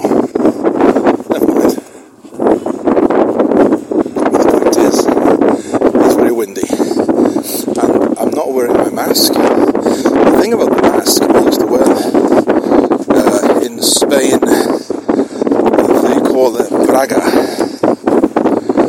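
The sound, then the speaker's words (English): Strong wind buffets the microphone of a hand-held mobile phone in loud, continuous gusts, with a low roaring rumble that almost never lets up. A voice seems to be talking underneath the blustery noise. “But we'll keep on going, although it is very windy.”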